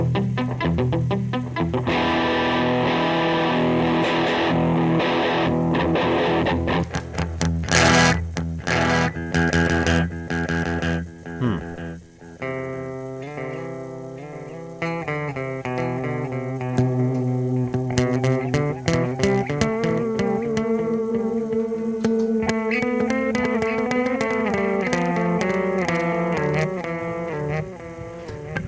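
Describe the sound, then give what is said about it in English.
A loud, overdriven electric guitar plays through an amp, its signal now much louder than earlier, ringing out sustained chords and single notes with thick, buzzing harmonics. It stays strong and steady throughout, with no voices. “The entire signal is much louder now than it was.”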